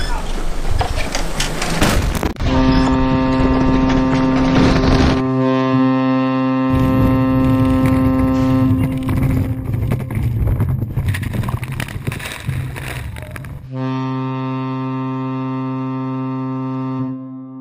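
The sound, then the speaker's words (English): A loud, sustained boat horn blares with steady harmonic tones, holding for several seconds, cutting briefly, then sounding again in long blasts over a rumbling, noisy background. “Look, Rusty, Lord Jeremy says, look out, Rusty's boat is coming through.”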